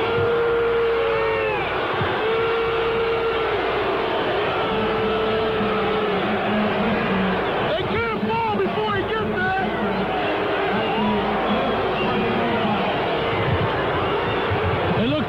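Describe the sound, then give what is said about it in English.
A loud, continuous basketball crowd roar reacting to an offensive foul called on Parrish, his fifth, in a Crusaders game against Modesto Christian, with scattered shouts and jeers rising out of the din, swelling briefly midway before settling back to a steady murmur. “And you can hear from the crowd that they thought so too.”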